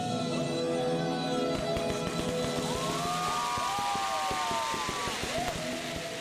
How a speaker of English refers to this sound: Tanks have been spotted on the streets of Donetsk just hours after Putin's speech. Groups there were waving Russian flags and setting off fireworks following the announcement.